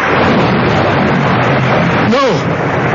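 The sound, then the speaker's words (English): A heavy rainstorm with thunder roars steadily, a dense hiss with a low rumble beneath it, and a brief rising-then-falling tone cuts through near the end. “I know where the rain is coming from.”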